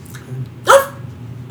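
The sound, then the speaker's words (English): A single sharp dog bark rings out clearly against a quiet, low background hum, followed by a faint start of another sound right at the end. “I'm hung up on my dog, Tristan.”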